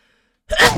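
Out of silence comes a sudden, forceful sneeze, fairly loud, a sharp breathy burst that ends abruptly.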